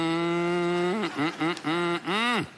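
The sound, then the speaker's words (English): A person imitates a cow, giving one long, steady low moo followed by a few shorter, wavering moos. The voice is loud, with no other talking. “Are you doing? Or just mooing?”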